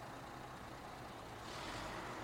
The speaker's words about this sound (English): Where am I? The bus station.